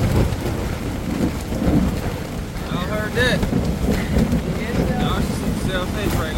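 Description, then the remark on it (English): Steady, loud rain hisses throughout while deep thunder rumbles underneath. Faint high chirps drift in and out during the second half. “Every single night, guys, every night, almost, except for one night, there were lightning and thunder storms.”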